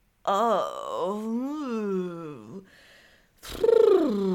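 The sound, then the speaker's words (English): A single voice lets out creaky, groaning vocal fry with no words during a yawn-and-stretch vocal warm-up, sliding slowly up and down in pitch, pausing briefly, then returning with a louder, rougher moan. “Let your voice creak and smoosh around.”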